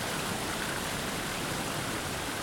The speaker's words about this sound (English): But when they travel to a waterfall, its white noise lets them relax for a while. They can speak aloud without fearing for their lives.